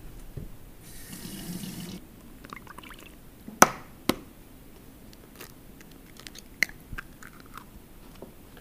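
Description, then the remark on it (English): White cake mix being combined with water, oil and eggs: a short splash of pouring liquid, then a few sharp cracks and clinks over a soft, scraping stir. No one speaks. “So, blend pure white stuff with water, oil, and eggs.”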